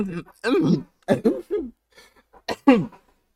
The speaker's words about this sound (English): Falling down, coughing from laughing.